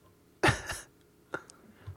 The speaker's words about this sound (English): Coughing.